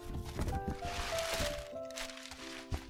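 Packing paper crinkles and rustles in a continuous, crackly stream of crumpling as a package holding a Nintendo 64 console is unwrapped, with a few sharper crackles and a faint steady hum beneath.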